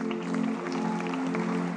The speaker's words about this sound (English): Thank you. Please, let's clap for all of them.